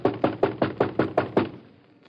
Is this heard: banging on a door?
yes